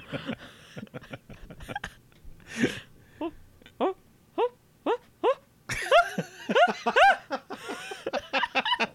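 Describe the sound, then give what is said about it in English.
A person imitates a monkey excited about hearing an ice cream truck, with a rapid series of short, high-pitched hoots and chattering cries, rising into a louder, frantic burst of whooping shrieks toward the end. “What would a monkey sound like that was excited about hearing an ice cream truck?”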